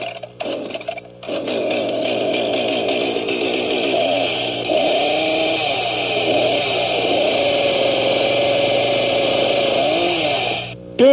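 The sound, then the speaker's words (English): A chainsaw sputters to life after a brief pull, then runs steadily with a loud, buzzing motor drone that wavers slightly in pitch before cutting off abruptly near the end. “All right, I'm going to start the chainsaw.”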